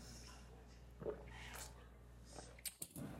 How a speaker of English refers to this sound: I'll take another sip here.